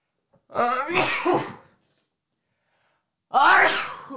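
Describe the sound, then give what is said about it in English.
Two loud sneezes, the first a drawn-out burst and the second sharper, separated by a couple of seconds of silence. “I'm about to sneeze.”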